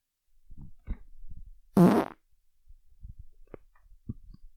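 A loud, rasping fart bursts out for about a third of a second, surrounded by soft thumps and faint low rumbles in an otherwise quiet space, with no one talking.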